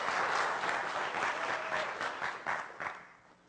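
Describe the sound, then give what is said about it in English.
An audience applauds, a dense wash of clapping that holds steady and then gradually thins and fades out over a few seconds. “You got to clap for her, because that's horrible.”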